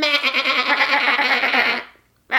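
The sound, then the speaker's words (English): A person imitates a goat, letting out a long, wavering, nasal bleat that trembles for almost two seconds before cutting off, followed by a brief breath or sound at the end. “Let's make goat noises on our podcast.”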